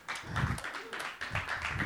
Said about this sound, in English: Round of applause for the giver and the getter.